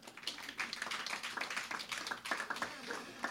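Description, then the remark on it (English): An audience claps steadily for a few seconds for Pope John Paul II, a dense, crackling wash of many hands at a moderate, even level with no voices standing out. “Please clap for the Pope.”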